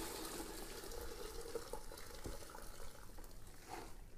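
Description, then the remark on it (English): Water pours steadily from a strainer into a recycling water bin for about four seconds, a continuous rushing splash with no talking. “This is going into my recycle water bin.”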